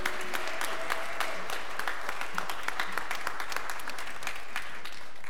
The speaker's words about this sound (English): And also some special applause to our children and mom choir. Yeah.